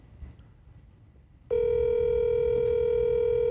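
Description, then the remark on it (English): After a brief quiet hiss, a loud, steady, buzzy telephone tone begins partway through and holds at one pitch without a break until the end, with no voices, as a phone call is placed to TSN analyst Jeff O'Neill. “So at risk that this is going to end up on voicemail.”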